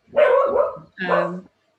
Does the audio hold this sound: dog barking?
yes